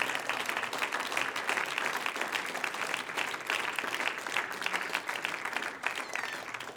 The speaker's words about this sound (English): Why don't we give the Lord a hand clap in this place?